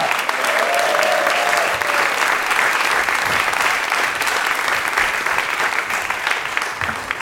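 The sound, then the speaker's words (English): Loud, sustained applause from a large audience at the Caney welcoming a show's panel, a dense steady clatter of clapping that holds for several seconds and tapers only slightly toward the end, with no one speaking over it. “Please make some noise for”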